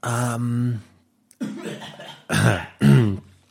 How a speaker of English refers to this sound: Let me clear my throat.